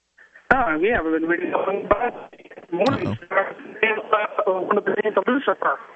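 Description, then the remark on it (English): A caller's voice talks over a narrow, tinny phone line that keeps breaking up, with sharp clicks, brief dropouts and garbled stretches interrupting the speech. “By the way, your phone, we're losing your phone, man.”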